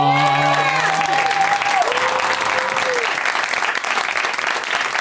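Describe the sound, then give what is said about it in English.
A crowd applauds loudly and steadily for the full five seconds as four guests are welcomed onto a show, with dense, even clapping and a few voices whooping and cheering at the start. “Please give it up, everybody, for Allison Rosen, Dan Schechter, John Hawks, and Dustin Ibarra.”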